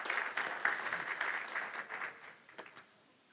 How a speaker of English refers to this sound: So let's give all them a big hand clap, and all the staff,